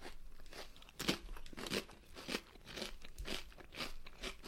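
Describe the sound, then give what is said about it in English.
Crisp crunching of a sea salt potato chip made from potatoes, canola oil and sea salt being chewed, a series of sharp, bright bites in an uneven rhythm, fairly quiet overall with no talking. “This is not a very salty chip.”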